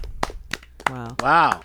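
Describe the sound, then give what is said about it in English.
A few sharp hand claps from one person, spaced slightly apart, then a voice breaks in with drawn-out, excited vocal sounds. “I was clapping for myself.”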